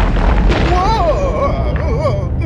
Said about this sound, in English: Drill mode activated. Drill mode? Diving to the ocean floor to drill into the Earth's crust in 3, wait, maybe two, we can talk about this. 1. Whoa, we're drilling into the Earth.